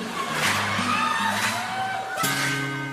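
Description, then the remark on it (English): Loud, sharp claps on a WCGO radio broadcast land about once a second, three in all, over a steady tonal backing with sustained low notes and a bright, crowd-like wash. “That clapping's messing my head up, man.”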